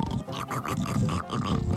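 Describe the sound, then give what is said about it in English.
A voice imitates a father's loud, rattling snores as he lies in bed drooling: rough, guttural grunting breaths repeating in quick pulses, low and raspy, with no words spoken. “I went running in there, and there was Daddy snoring and drooling, that noise rattling.”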